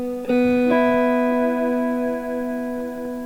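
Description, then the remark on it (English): A sustained electric guitar chord rings out through the modulated delay of a Brig pedal, a smaller box than the Brigadier, its harmonics shimmering and repeating softly as the tone hangs and slowly decays, with no one speaking. “this Brig, which is a smaller box than the Brigadier, the is kind of one of the closer things that I've found to get that modulation.”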